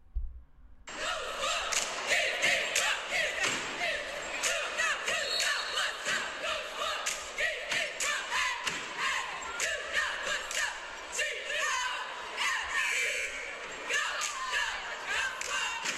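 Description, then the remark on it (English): A group of voices performs a stomp and shake cheerleading chant, chanting and shouting in unison over loud, rhythmic stomping and clapping, a steady pounding beat that runs the whole time with hardly a pause. “This is what stomp and shake cheerleading sounds like.”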